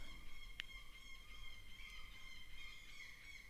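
Gulls squawk and cry outside while fighting, their harsh overlapping calls running on steadily but faintly, with one sharp click early on and no voices.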